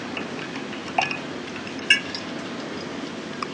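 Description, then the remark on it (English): Someone takes a quiet sip of water from a glass, with two soft clinks of glass and faint liquid sounds against a steady low background hiss, and no talking. “Take a sip of water so you all can catch into it.”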